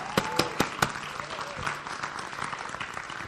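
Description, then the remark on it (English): An audience claps, starting with a few sharp, loud claps in the first second before settling into steady, dense applause that continues throughout, with faint voices mixed underneath. “Stay there just a minute. Clap.”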